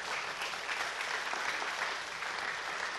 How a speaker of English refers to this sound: I want you to give one another a round of applause. Would you do that?